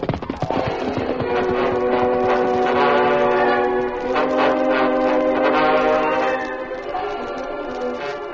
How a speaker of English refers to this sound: Sounds like the work train coming now, Lou.